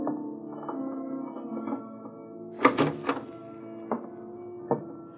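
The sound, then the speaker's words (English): The back door of a building clunks open with a quick cluster of knocks and rattles, followed by two slow, heavy footfalls on the stairs, spaced apart, all over a low, steady droning hum. “The back door and the stairs up would be smarter under the circumstances.”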